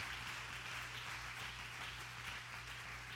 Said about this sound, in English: Now I want you to give a hand clap to all those young men that followed him around. Praise God.